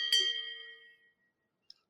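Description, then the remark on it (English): A round bell is struck: a single bright bell ding with a sharp metallic strike that rings out in sustained tones and fades over about a second, followed by a tiny faint click. “If you're not, I'm happy to edit this out of the podcast, but I will hit my round bell.”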